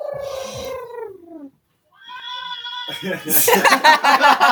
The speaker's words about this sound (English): Where these cats coming from? Damn, where all these cats at, bro?